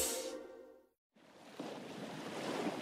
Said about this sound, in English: There's nothing like being near the ocean. The cool breeze, the salty air, the annoying seagulls. And of course, the soothing sound of crashing waves.